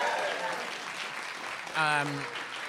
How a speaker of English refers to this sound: Wonderful. Thank you all for coming to the show. You can clap for yourselves, please.